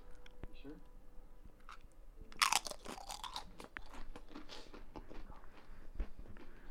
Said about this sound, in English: How many people do you reckon have tuned out when I've been chewing these Pringles?